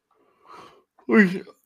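A drawn-out yawn: a soft breathy inhale followed by a louder, stretched voiced groan that wavers in pitch before trailing off, with no speech.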